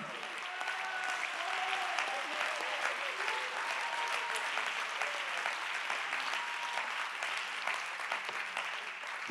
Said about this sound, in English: Clap your hands and give him praise one more time. In this house, everybody give him praise.